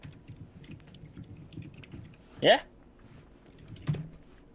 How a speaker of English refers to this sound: I was typing.